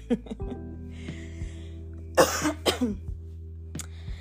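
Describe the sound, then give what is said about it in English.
A couple of harsh coughs burst out in quick succession, with a few small throat noises and breaths around them over a steady low hum. “I'm not going to cut that. I just had to cough.”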